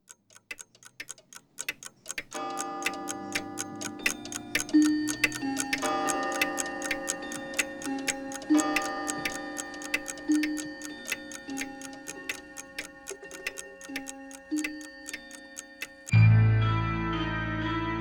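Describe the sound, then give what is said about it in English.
A steady, evenly paced clock ticking runs throughout, soon joined by sustained eerie musical tones, before everything cuts to a deep, booming low hit near the end. “The Black Clock is presumed to have been destroyed in the fire.”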